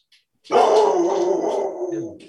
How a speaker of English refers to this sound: You had someone at the door? Yeah. Yeah, why? Why? It's like Gray just sicked the dog on the person at the door. He ain't even up to the front door. He's like, go ahead, hey, go ahead and eat him right quick.